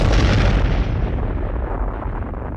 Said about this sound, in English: Tangier's influence was too much, and Whiff's last sinister action in this world was to push the button that decimated an entire nation. The bomb ignited the atmosphere, and millions died.